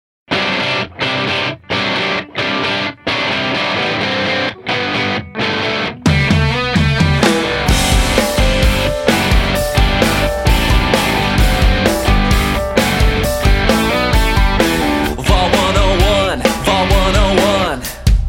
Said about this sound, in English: What I really love about this song is that, in addition to talking about the locations and themes from the game, the song is also just a really fun song to listen to.